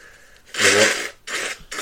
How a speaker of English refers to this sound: Sorry. Well, I can't answer it when you're blowing your nose again.